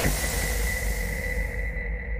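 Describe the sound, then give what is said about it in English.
Steady radio interference: a broad hiss of static with a thin, sustained whine running through it, with no talking. The upper crackle thins out toward the end. “I'm getting interference.”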